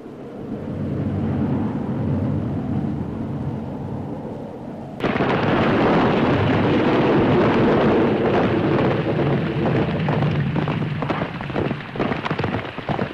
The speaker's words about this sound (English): Oh my god, yes, the thunder and the lightning and the rain.